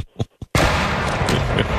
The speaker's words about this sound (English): The Lightning will go all the way for Tampa Bay. Fire the cannons.